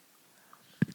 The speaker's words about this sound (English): Can you hear us chewing a chocolate? Mm-hmm. Is it attractive?